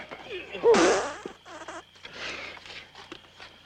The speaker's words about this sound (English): This is the first film to use audible flatulence.